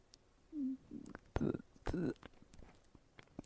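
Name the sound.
swallowing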